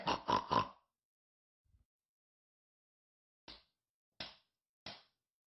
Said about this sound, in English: A slap across the face. A strike to the cheek.